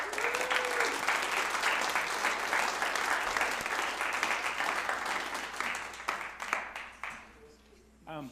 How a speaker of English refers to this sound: Thank you, ladies. I think this is what we got for today. If you guys want to give them a clap.